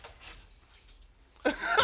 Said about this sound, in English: I'm surprised when he grabbed his keys.